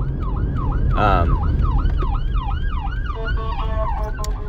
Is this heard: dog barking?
no